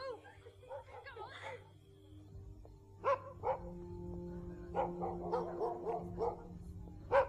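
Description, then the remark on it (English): Dogs bark in short, sharp bursts while chasing a man down a street during the filming of a scene, first a couple of single barks and then a rapid flurry of overlapping yaps, over a steady low hum with some indistinct voices early on. “These dogs, they came out of nowhere and very kindly participated in the scene and chased Paul down the street.”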